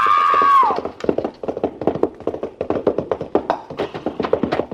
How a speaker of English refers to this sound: You were racing. The horse stumbled over that lower bar and threw her.